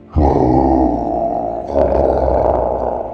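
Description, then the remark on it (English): A person voices a deep, rough, loud growl, sustained for about three seconds with a slight rasping swell midway, imitating a snarling creature. “As the eyes look around, look at you, and then suck back into the head, growling.”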